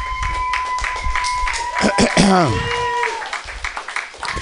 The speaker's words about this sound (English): Yeah! Blown away! Keep applauding like I'm fucking famous, man.